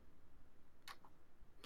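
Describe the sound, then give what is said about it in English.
A few sparse, quiet clicks of typing on a computer keyboard, irregularly spaced, with no voices over a faint background hum. “No, it's let me excuse my typing.”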